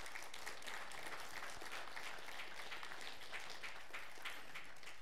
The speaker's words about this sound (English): Would you give those folks a round of applause for being bold and doing that right now?